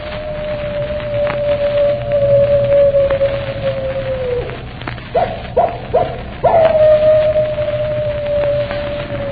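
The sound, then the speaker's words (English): A long, mournful animal howl holds steady, breaks into a few short choppy cries, then swells into another sustained howl over a low, rumbling background. “And they say if you keep your ear to the wind, you can hear his animal howl a hymn of death.”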